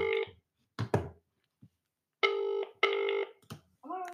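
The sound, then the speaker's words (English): A telephone rings on the line as a phone call is placed, in two long, steady harmonic bursts heard clear through the receiver, with a few brief clicks and thumps between them. “Right, it's a ringing.”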